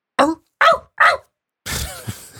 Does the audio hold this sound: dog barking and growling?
yes